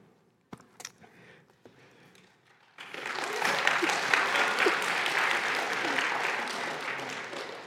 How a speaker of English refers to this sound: I don't know what you guys are clapping for, but thank you.